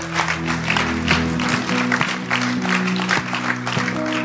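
A church audience applauds with dense, steady clapping that holds for about four seconds, while low sustained musical tones hum underneath.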